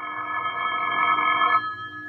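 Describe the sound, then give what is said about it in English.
A telephone rings for a phone call at 9:30, one steady, bright burst lasting about a second and a half, then cuts off and fades, heard alone with no talking. “The phone call came at 9:30.”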